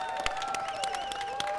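An audience gives a round of applause for a guest and a co-host, a steady, dense patter of clapping, some sharper claps standing out, while sustained whistle-like tones and crowd cheering ring over it throughout.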